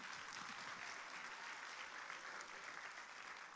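A crowd claps hands in steady, dense applause, a continuous loud patter of many overlapping claps with no single rhythm, holding even for several seconds without speech.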